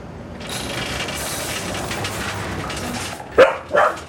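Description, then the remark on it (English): A dog named Finbar lets out two or three loud, sharp barks near the end, following several seconds of steady, rattling background noise. “Good dog.”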